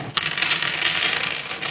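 Dice are rolled, clattering and rattling across a hard surface in a busy, continuous tumble lasting under two seconds, fairly loud, with no voices.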